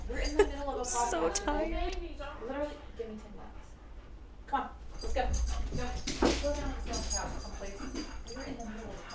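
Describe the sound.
Two dogs whimper and yip in a run of high, whiny cries over several seconds, with muffled voices and some household clatter mixed in.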